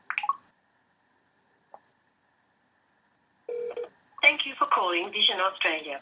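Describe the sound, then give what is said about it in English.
A short burst of phone ringback tone sounds after a brief silence, then a voice answers over the line, slightly thin and tinny as if heard through a call. The call to Vision Australia is placed from an iPad mini using an iPhone. “And again, that was using my iPhone to actually make the phone call from my iPad mini.”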